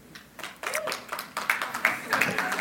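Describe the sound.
A church audience claps in a burst of scattered applause as a poll by applause on rooting for the New England Patriots to win the Super Bowl, with sharp, overlapping hand claps building and holding at a moderate level, accompanied by faint murmuring voices.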